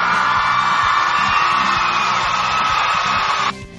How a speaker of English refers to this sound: So from what I heard during the weekend and from the Sonic Stadium music album team, very, very big round of applause there for everyone.